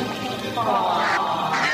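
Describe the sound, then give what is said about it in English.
A duck quacks loudly, a quick run of raspy, nasal calls packed into under two seconds, with the sound barely pausing between quacks, in the trailer for the film Young Doctors in Love. “Don't tell anybody that Dr. Buck fixed your duck.”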